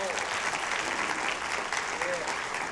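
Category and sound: crowd, audience applauding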